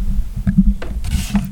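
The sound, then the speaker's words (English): A low, rumbling fart into a microphone sputters for more than a second, with a few short noisy bursts breaking through the steady bassy flutter. It is fairly loud, with no talking over it. “You farted into the mic?”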